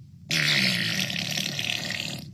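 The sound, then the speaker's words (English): A voice imitates a fart with a loud, raspy, sputtering raspberry that starts abruptly and drags on for about two seconds before fading out, with no talking. “And I was like, I just farted.”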